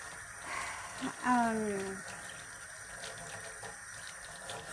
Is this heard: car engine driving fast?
no